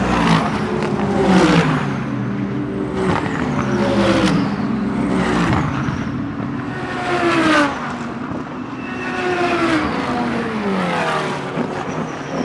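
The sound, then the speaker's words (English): A GT race car engine revs hard and continuously, pitch climbing and dropping through repeated gear changes as it drives on the track, loud with no voices. “Modern GT racing cars are purpose-built track weapons designed to extract every bit of possible performance out of a car's platform across every homologation level.”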